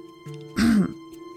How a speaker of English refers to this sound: Well, his dad paused to clear his throat.